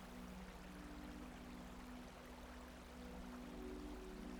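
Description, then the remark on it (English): Steady, quiet trickling and pouring water as a water bottle is filled with cold, clear water from a stream in a meadow at twilight, with a low hum underneath and no voices. “You kneel next to the stream, filling your water bottle with cold, clear water.”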